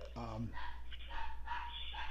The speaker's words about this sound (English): There goes my dogs.